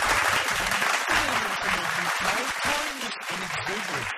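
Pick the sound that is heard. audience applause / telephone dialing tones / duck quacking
audience applause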